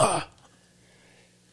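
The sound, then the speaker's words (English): A single short, harsh cough bursts out at the start, then fades into near silence with only faint background hum. “I'm coughing like every fucking He's like, seconds.”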